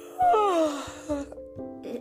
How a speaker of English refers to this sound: What just happened? Did I yawn? I yawned. Oh my. There it is.